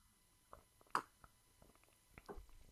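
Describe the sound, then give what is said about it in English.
A quiet first sip of a fizzy ginger lime seltzer: one brief slurp near the start, then soft mouth clicks and small wet swallowing sounds, with no talking. “I'm gonna take my first sip.”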